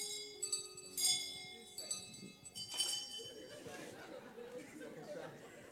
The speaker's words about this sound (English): I think I have to start banning the bells from this church. There are too many bells.